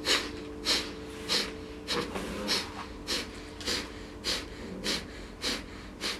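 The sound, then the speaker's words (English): Rapid, forceful breaths through the nose in the breath of fire technique of Kundalini yoga, about ten sharp huffs in a steady, quick rhythm, fairly loud, with no talking. “And it's a rapid inhale and exhale through the nose.”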